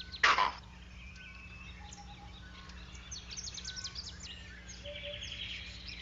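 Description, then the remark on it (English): A single harsh, raspy alarm-call shriek from a superb starling, warning of danger on the ground, bursts out loudly at the start, followed by a steady wash of softer chirps and twitters from other birds. “The bird shrieks a warning, shh, danger on the ground, and the monkeys repeat it using their own term, and everyone runs for it.”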